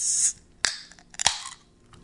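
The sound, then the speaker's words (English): A can of Purple Loon mocktail cracks open with two sharp clicks, followed by a soft hiss of gentle fizzing carbonation; a brief high hiss is heard just before, and no one speaks. “Has a nice sound when it opens. It's got a gentle fizz to it.”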